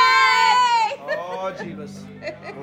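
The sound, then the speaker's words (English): A loud, drawn-out shout from a passerby in a passing car, high-pitched and sliding slightly downward for about a second, followed by someone talking in a normal voice. “That was an outrage. A drive-by yelling.”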